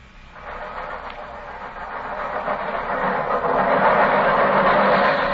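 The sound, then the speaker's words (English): An underground train rumbles past, running almost level with a building's windows, a broad roaring rush that swells steadily louder over several seconds, with a faint rhythmic rattle of carriages and a low mechanical hum beneath. No one speaks. “Holmes, the underground runs right past here, almost on the level of these windows.”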